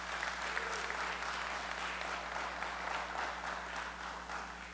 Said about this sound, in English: Yeah, we can clap for them again.